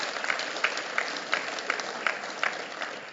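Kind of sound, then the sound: crowd, audience clapping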